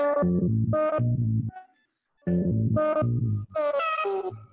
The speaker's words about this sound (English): And you can really change the timbre of it quite a bit by using wave shaper. This is a sine wave coming out and being, and the wave shape is changing quite a bit. It's got this lovely rubbery kind of sound.